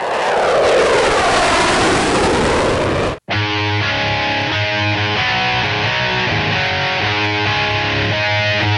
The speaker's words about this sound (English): Time for another flyover there in Iowa, I guess.